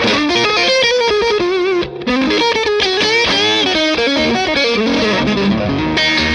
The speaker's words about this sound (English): So if I switch on to the Tube Screamer side, if I go to fat, I think it boosts a lot of the bottom end. Stock would be, I suppose, like a classic Tube Screamer.